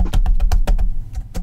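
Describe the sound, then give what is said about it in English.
Quick, irregular clicks of keys being tapped on a computer keyboard as a website address is typed in, fairly loud, about a dozen strokes in a short burst with no voices. “And let me just type in the website.”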